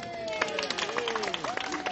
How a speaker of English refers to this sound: Here he is, and let's give him a round of applause.